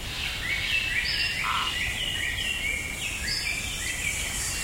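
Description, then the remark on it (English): Dense tropical rainforest ambience, with many overlapping bird calls and chirps ringing out over a steady hum of insects, continuous with no talking. “Imagine a tropical rainforest.”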